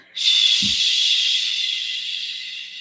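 During a relaxing breathing exercise, a group of voices lets out one long, steady "shh" breath, a broad bright hiss that starts abruptly and holds for nearly three seconds, fading only slightly, with a brief low thump early on.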